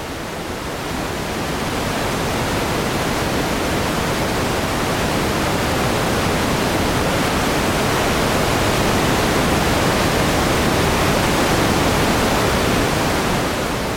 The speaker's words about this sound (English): Notice it's a really waterfall-like sound, and this isn't common with noise generators. Normally noise generators are random but consistent.